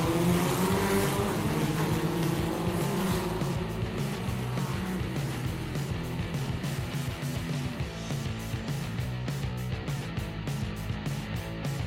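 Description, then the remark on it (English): Racing karts buzz loudly around the PF International track at the Trent Valley Car Club during the first round of the 2018 MSA British Karting Championships, several high-revving engines overlapping in a continuous whine that rises and falls as they accelerate and pass, with no voices. “We are here at PF International at the Trent Valley Car Club for the first round of the 2018 MSA British Karting Championships, and of course here for the Tutto Money Super 1 British Karting Championships”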